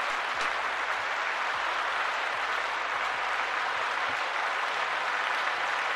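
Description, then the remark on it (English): Steady applause from a group for Cooper Rush fills the whole stretch, a dense, continuous wash of clapping at a constant loud level with no voices rising above it. “Let's clap it up. Let's clap it up.”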